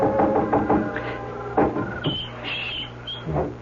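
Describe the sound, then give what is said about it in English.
Someone on a porch roof gently knocks at a window: a quick run of soft knocks on glass, followed by a couple of isolated taps, quiet, with faint high chirping in the background. “By the front of the house, I doubled back to the trellis in the wisteria and was up on the porch roof in a moment, knocking at Polly's window gently.”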